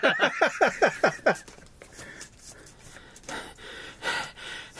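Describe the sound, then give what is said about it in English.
A player in a card game performs exaggerated heavy breathing: a quick run of about seven sharp, rhythmic gasping breaths, then softer, raspier breaths trailing off. “It says heavy breathing in parentheses, by the way, so.”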